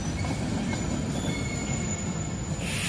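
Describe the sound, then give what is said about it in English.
A train rumbles past on the rails, a dense, steady low roar with faint high metallic squeals from the wheels, loud throughout with no talking. “Oh, foreshadowing a train?”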